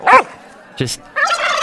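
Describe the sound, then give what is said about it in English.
A bunch of wild turkeys up in a tree in Podcaster Valley gobble in a few short, rattling bursts with pauses between. The calls are fairly loud, with no talking. “Oh, they're turkeys. A bunch of turkeys were up in the tree.”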